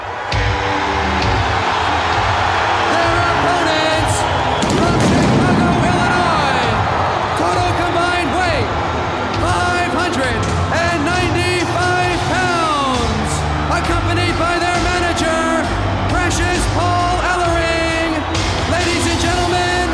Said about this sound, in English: This crowd is just so hot. One of the things I like so much about this event is, so you get the Road Warriors taking on the Skyscrapers, and the crowd reaction to the Road Warriors when they come out is unbelievable on the show.